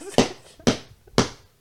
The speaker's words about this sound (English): That's what you get for being fucking shirtless. Why are you laughing? I just slapped the shit out of you.